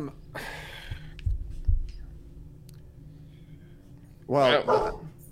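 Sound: dog barking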